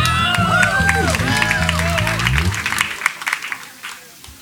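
An audience bursts into steady, dense clapping, with whoops and the fading tones of a band's final chord in the first half before the applause carries on alone and thins slightly.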